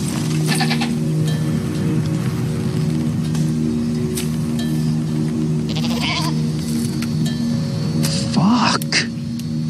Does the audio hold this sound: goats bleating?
yes